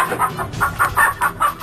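Chickens clucking in a quick, steady run of short, bright calls, about five or six per second, moderately loud with no talking over them.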